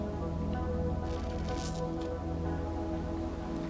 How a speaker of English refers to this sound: Hang on, I'm going to get another sip of coffee here.